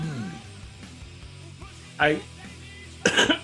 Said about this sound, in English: I could. That was a cough again. God bless you.